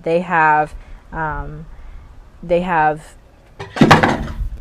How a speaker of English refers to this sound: Sorry, my cat just knocked off my water bottle off of this thing that I'm sitting on. They're very nosy.